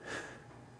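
A single long sniff of air drawn sharply through the nose at a glass of dark caramel malt beer, 6.5% alcohol by volume, breathy and noisy, swelling quickly then tapering off over under a second with no talking.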